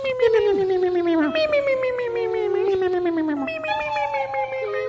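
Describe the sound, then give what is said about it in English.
A voice mimics a trumpet with long, brassy, wavering tones that slide downward in pitch, three drawn-out phrases in a row, loud with no words. “That was a trumpet.”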